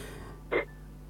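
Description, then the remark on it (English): A single short, sharp sneeze bursts out of a quiet background, lasting only a fraction of a second with a breathy, noisy burst and no talking around it. “Bless you.”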